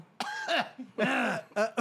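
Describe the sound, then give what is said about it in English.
A voice imitates a moan that breaks into a series of rough coughs, several voiced bursts in quick succession, loud with short pauses between them. “I don't think you're the one coughing.”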